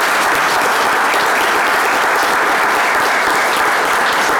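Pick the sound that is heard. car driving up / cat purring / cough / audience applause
audience applause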